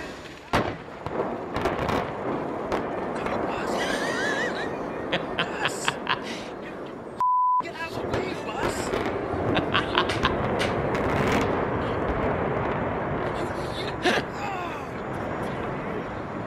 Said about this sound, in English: They're about to blow the dome. And then this happens.